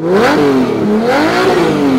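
A car engine revs loudly, its pitch climbing and dipping twice in quick succession with a rough, throaty growl and no voices.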